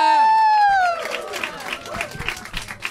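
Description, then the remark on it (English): A sustained high whoop opens, sliding slightly downward, then a live audience breaks into dense, steady clapping mixed with scattered cheers and crowd noise, loud throughout, as a guest is welcomed. “Please start clapping right now.”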